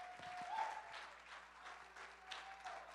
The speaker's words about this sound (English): If you believe it, take 15 seconds, clap your hands unto God, and let him know that you know he's going to deliver you today.